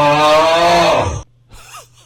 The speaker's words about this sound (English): What is that? Maybe like a zombie cow? A zombie cow. A zombie cow.